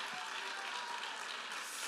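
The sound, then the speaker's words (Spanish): An audience gives a strong round of applause to the Lord during a sermon, a dense, steady burst that holds at an even level throughout, with no one speaking over it. “Alguien de un fuerte aplauso al Señor con el corazón.”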